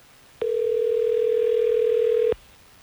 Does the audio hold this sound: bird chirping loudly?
no